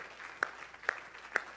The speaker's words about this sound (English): Everybody say, in Jesus' name, would you just clap your hands to Jesus? Thank you, Lord.